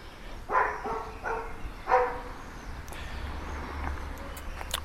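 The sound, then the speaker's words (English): A person mimics a dog, letting out three short, loud barking yelps in the first two seconds, followed by quieter background rumble with a few faint clicks. “Yes, ladies and gentlemen, we are now translating David's Daily Digital Dollop into dog.”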